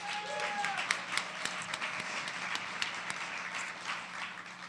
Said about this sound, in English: So thank you. I want to give you all a round of applause for being here.